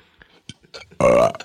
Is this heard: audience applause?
no